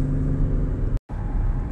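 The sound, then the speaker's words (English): Steady, low engine and road rumble from inside a car being driven while the speaker records, broken by a split-second dropout to silence midway before the drone resumes. “So today we're going to talk about, if you can hear my car a little bit, I'm recording as I'm driving here.”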